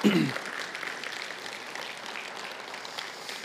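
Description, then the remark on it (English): An audience in the room breaks into a round of applause to greet viewers joining online, many hands clapping in a dense, steady patter that holds at an even level throughout, after a brief voice at the very start. “And for everyone here in the room, can we just say hi to those who are joining us online by giving a round of applause?”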